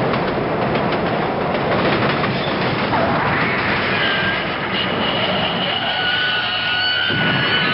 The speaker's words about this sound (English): Close, that sounded like a car crash, but I was thinking more the bigger disaster of a train wreck.